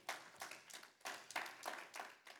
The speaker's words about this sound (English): Amen? Amen. Amen. Come on, y'all give the Lord a hand clap of praise this morning.